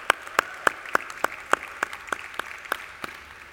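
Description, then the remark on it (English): Audience applause welcoming a panel moderator to the stage, with steady, evenly spaced sharp claps, roughly three per second, standing out over a soft wash of background clapping and crowd noise. Moderately loud, with no talking. “Round of applause, please, ladies and gentlemen.”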